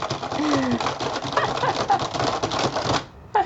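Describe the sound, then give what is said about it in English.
Rapid, nonstop keyboard typing in the exaggerated style of a movie or TV series: a dense, fast clatter of keys, fairly loud, that runs about three seconds, pauses briefly, then gives one short final burst. “When you're watching a movie or a TV series and there's a keyboard, this is what the keyboard sounds like.”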